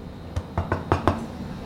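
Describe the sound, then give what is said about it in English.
Five sharp knocks on a door with a low thud to each, in an uneven rhythm, the later ones slightly harder, with no voices over them. “That second one was a hard knock.”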